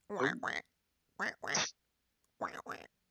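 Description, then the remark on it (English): A person's voice imitates a duck, giving three pairs of nasal, harsh quacks with short pauses between each pair, fairly loud with no other sound around. “How about the sound of a duck quacking?”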